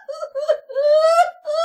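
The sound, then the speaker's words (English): A person wails and screams in loud, drawn-out cries, four strained bursts with the pitch climbing through the longest one, with no talking. “This does not at all surprise me anymore, but you're screaming and I'm stressed out.”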